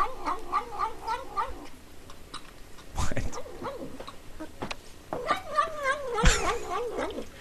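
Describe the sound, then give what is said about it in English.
A cat makes a rapid series of short, wavering nom-like vocal sounds while eating sour cream, in two bursts, with a couple of sharp clicks or smacks in between. “There is, in fact, reports of a cat that says nom nom nom nom when it eats sour cream.”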